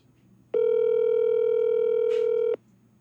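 A steady, loud telephone dial tone drones for about two seconds, a single unbroken electronic hum with a brief faint rustle near its end, then cuts off abruptly.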